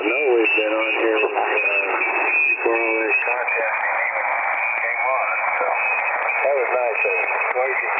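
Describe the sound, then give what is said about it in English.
Ham radio audio on 7060 with overlapping voices garbled together as operators try to talk, a second transmission on an adjacent frequency bleeding over the main one, steady and continuous throughout under a harsh, hissy, narrow-band tone. “Now, I know this is super obnoxious and annoying to listen to, but that's what people are hearing when they're trying to communicate during an emergency when somebody is bleeding over because they're not separating wide enough.”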